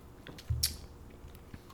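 A quiet sip of beer: a soft low bump followed by a short wet slurp, then near silence with a faint click at the end. No one speaks.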